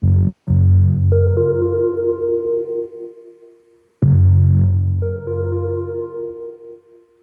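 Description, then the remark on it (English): A sparse musical passage of a simple chord progression: a deep bass line under sustained background keyboard chords, played as two similar phrases of about four seconds each, with a brief gap near the start and no voices. “So it's a very simple chord progression, and here I'll show you just the bass and the main background keyboard part so you can hear how that goes together.”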